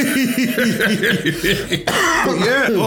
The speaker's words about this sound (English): he's got a little bit of a tickly cough there.